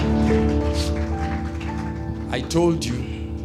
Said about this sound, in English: Somebody give the Lord a hand clap in the house. Amen. Hallelujah. Hallelujah.